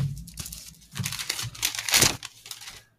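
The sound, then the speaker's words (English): Fairly loud crinkling and rustling of a paper sheet being handled, with irregular bursts of crumpling and a brief tearing-like crackle, no talking. “Here, give me a piece of paper.”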